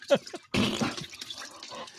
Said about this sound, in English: We're going to just pour a fucking bottle in the toilet.